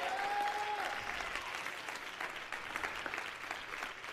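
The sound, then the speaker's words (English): An audience at a church worship service breaks into sustained, dense clapping mixed with scattered shouts of yes and cheers, steady and fairly loud throughout, with a brief whistle-like tone at the very start. “Everybody clap your hands and shout, yes!”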